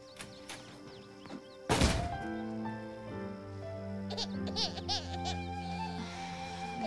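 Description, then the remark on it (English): A door slams shut once with a sharp, heavy bang, after which wavering, bleat-like cries rise and continue over a steady tonal background. “Slams the door, completely disregarded all of her pleas.”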